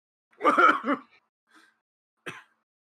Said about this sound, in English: Do you hear a cough?